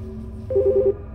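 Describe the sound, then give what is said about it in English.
A quick run of four electronic telephone tones beeps out in an even rhythm, fairly loud, over a low steady hum, with no one speaking. “The phone again.”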